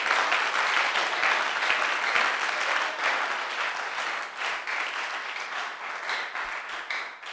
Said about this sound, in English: Hallelujah. Come on, clap your hands together for the Lord.